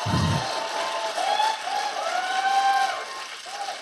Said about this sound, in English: Oh, thank you. Yeah, no, if anything deserves applause.